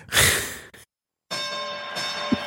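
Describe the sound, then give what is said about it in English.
A breathy sigh, a brief silence, then a bell rings out with a sustained, shimmering tone that hangs steadily to the end, moderately loud. “The bell rang and it's done.”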